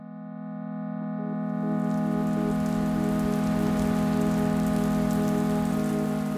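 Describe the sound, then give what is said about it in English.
Steady rain on a rainy night patters on a hard surface, a dense continuous hiss that swells in over the first two seconds and stays fairly loud, with a low droning hum underneath and no voices. “The beginning of the end of Barri's Centrepoint days, well, at least her time living there, is one rainy night not long after the big raid.”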